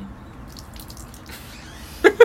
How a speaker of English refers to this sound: actually poured Bud Light on our balcony. Now we're going to have to clean that up.